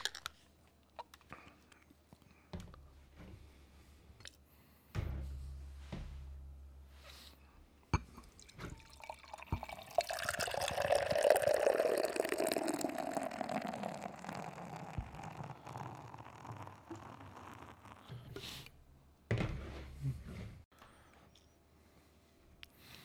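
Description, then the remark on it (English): A reddish-orange IPA beer of 7.0% ABV pours into a glass with a foamy gurgle that swells and then tapers off. Quiet drips and small clicks come before and after, with no talking. “we got this poured out.”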